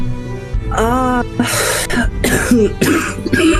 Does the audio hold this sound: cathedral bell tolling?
no